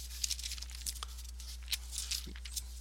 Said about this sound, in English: Get back over here in Genesis. I'm working with a new Bible, so it takes a little bit longer to turn the pages at this time.